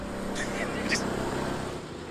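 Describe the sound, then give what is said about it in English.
A small combustion engine of a motorized cart driving down a street drones steadily, a low buzzing motor hum that holds through the whole moment, with a couple of brief higher chirps near the start. “Because that definitely sounds like an ice motor going on these.”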